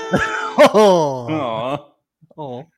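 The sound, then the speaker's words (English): A person imitates a cat, voicing three drawn-out, sing-song meows with gliding pitch, the last one shorter and softer after a brief pause. “Meow, meow, meow.”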